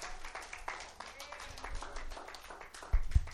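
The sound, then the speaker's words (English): An audience gives God a hand clap, clapping in a steady, dense patter of many overlapping claps, with scattered voices mixed in, swelling slightly louder toward the end. “Give God a hand clap, please.”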